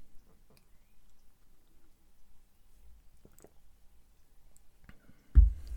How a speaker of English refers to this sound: Let's have a quick sip.